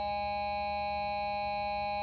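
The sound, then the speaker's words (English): A buzzer closing this week's Green Wave Coaches Show sounds as one long, steady electronic tone with several bright, even pitches, holding at the same loudness for about two seconds with no voices. “That's a great buzzer to close off this week's Green Wave Coaches Show.”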